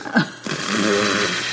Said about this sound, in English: That's a different shape of a fart.